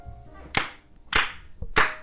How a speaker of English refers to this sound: There we go. Three significant claps. Good. Nice. Clappers.